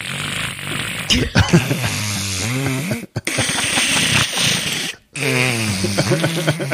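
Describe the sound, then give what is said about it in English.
A person vocally imitates their cat's snoring: loud, gurgling, raspy voiced snorts in three long bursts separated by brief pauses, with no other talking. “My cat snores. Oh, really? Yeah. It's horrible. He sounds like a gremlin. Go on. Can you do an impression of it?”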